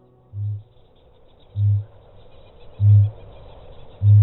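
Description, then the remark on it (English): Four deep, resonant booms from a kakapo, evenly spaced about a second apart and growing louder, over a faint background hiss with no talking. “The bird, unlike any other bird that he's describing, is the kakapo.”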